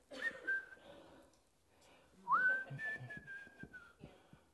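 Someone whistles a tune in two short phrases, the second starting with a quick upward slide into long held notes, clear over faint background noise.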